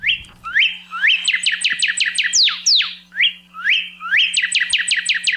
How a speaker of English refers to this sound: Northern cardinals are among the most common and recognizable birds in towns, backyards, and even some forests across Hawaii.